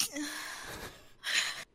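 A single sneeze: a breathy, gasping intake followed by a sharp, hissing burst of air, then silence. No one speaks.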